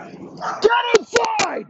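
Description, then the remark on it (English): A dog yips and barks in quick, uneven bursts, about four sharp calls with whiny, high-pitched tones between them, moderately loud. “I hate dogs. They have small brains, small little fucking peanut brains. And they just bark.”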